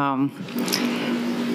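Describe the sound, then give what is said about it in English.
A washing machine runs with a steady low hum and a broad whooshing churn, after a brief voice at the very start. “sorry, there's the washing machine going on.”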